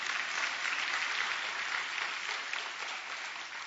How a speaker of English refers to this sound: Amen? If you believe that, just clap your hands and just thank Him.